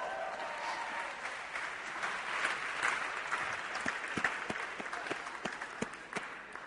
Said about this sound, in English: Round of applause for Larry, probably.